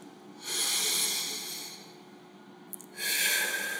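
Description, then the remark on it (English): Two long, slow deep breaths, airy, each a broad hiss of air lasting a couple of seconds, separated by a short pause, with no talking. “Let our breathing focus our mind and experience the presence of Jesus.”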